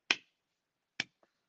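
finger snapping as applause

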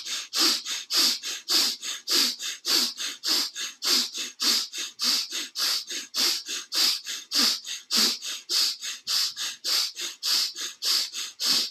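rapid deep breathing

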